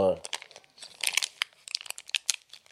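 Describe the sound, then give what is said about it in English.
Crackly crinkling of childproof plastic packaging being pulled and torn, in quick irregular bursts of rustle and snap, after a brief voice at the very start. “You can't tear that part. This is childproof.”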